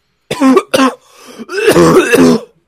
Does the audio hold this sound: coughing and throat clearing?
yes